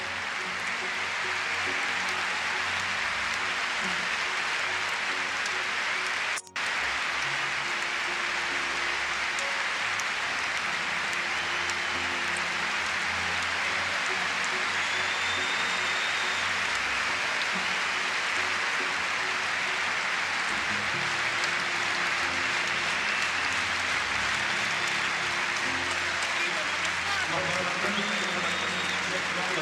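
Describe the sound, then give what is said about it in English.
A huge crowd at Olympic Stadium applauds and cheers without pause as the injured Derek Redmond of Great Britain, with assistance, approaches the finish line of a men's 400 meters semifinal: a dense, roaring wash of clapping and voices that holds steady and loud the whole time, with one sharp click early on. “Applause swelling throughout Olympic Stadium as Redmond, with assistance this time, approaches the finish line he had wanted so desperately to reach.”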